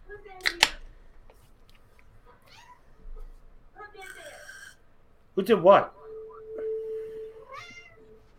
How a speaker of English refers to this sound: I hear a cat. Who put... Shut up. That's your cat? Yeah.